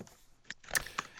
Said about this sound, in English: Are you typing again